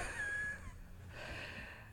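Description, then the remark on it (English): Someone sniffs a strawberry-scented marker, a breathy, airy inhalation lasting most of the two seconds, with a thin whistling tone near the start. No one speaks. “Okay, just sniff it.”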